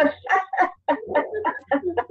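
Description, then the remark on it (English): Elderly dogs bark in a rapid run of sharp, overlapping yelps, about eight bursts in two seconds, fairly loud with no pause between them. “And apparently the dogs are agreeing with my comments.”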